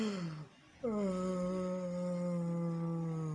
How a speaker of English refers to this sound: Yeah, that's how a yawn used to be. That's not how my yawn used to be, okay? It's gonna be a lot louder than that, okay?